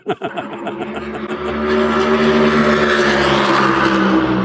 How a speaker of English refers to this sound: And trying to get questions in between the passes of these cars, it's tough, but these cars sound a little bit louder, a little bit different, a little bit heavier than what I've heard in the past.